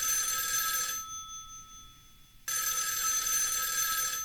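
An old-fashioned telephone bell rings in two bursts as a call is placed to a man's old phone, a harsh metallic jangle that stops for about a second and a half of near silence before clanging again, loud.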